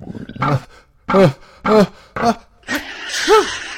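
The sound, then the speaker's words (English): A voice acts out a pig's big sneeze: a run of short, swooping vocal gasps building up, then a loud, breathy burst with a hissing finish. “Blue Pig sneezed so hard that Micro Pig went flying out of Blue Pig's nose and hit the wall on the other side of the room.”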